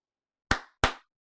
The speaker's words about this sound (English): Okay. So now that clap is going to be where I fucking splice the two.